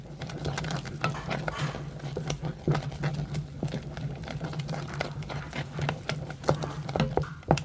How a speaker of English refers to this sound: That sounds like lovely warm porridge bubbling away.